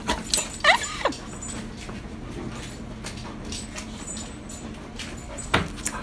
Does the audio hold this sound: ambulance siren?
no